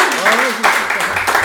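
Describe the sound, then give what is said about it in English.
A loud, steady round of applause, many hands clapping in a dense continuous wash, with a voice or cheer rising briefly over it near the start. “So we'll give us a round of applause for everybody.”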